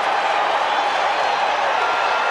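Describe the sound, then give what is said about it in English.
A crowd at Shea Stadium during the Mets–Red Sox World Series cheers in a steady, loud, unbroken roar, a dense wash of many voices that holds at the same level for a couple of seconds without pause. “Boy, this crowd came here to make some noise tonight.”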